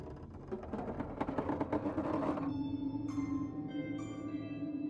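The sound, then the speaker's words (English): A door is pushed and creaks open slowly, with a drawn-out groaning whine that holds steady after a burst of rattly scraping, fairly loud with no one talking. “pushed the door open.”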